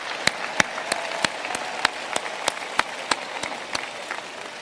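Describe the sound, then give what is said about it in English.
A convention audience applauds themselves steadily, a dense wash of many hands clapping with a few sharper, louder claps standing out at a regular pace throughout. “So please join me in applauding yourselves.”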